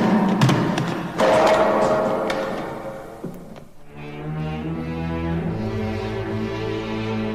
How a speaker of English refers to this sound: He flung me aside as though I were a floating leaf in the wind. My body crashed against the gong.